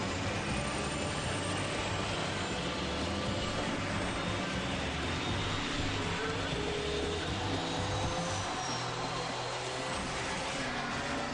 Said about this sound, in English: Car's spinning out here. Crashing into everything.